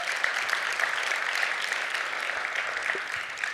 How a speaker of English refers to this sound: I feel like we applaud her for that.